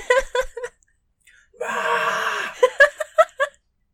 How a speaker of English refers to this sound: Another Gollum scream. I love them. They always make me laugh.